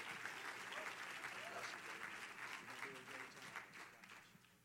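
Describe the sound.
An audience applauds steadily, many hands clapping in a dense, bright wash of sound with scattered voices underneath, fading slightly toward the end.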